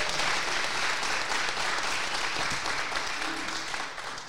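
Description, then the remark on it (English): A crowd applauds steadily, a dense, even wash of clapping that holds at a fairly loud level for several seconds before easing off slightly at the end. “That's worthy of some applause.”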